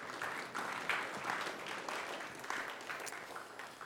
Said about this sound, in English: So thank you guys so much for joining us this morning. And yeah, y'all can clap for them. Y'all can clap.